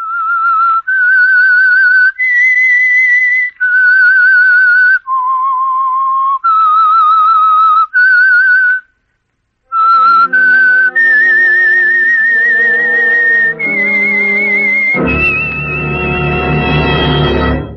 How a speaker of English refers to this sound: That whistle is your invitation to listen to the Household Finance Program, The Whistler.